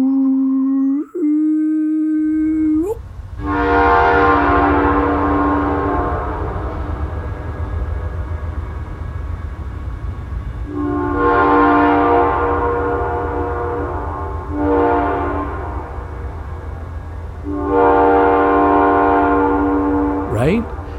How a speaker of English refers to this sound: in the old days, it wasn't a button, but it was a cord that would blow the train whistle.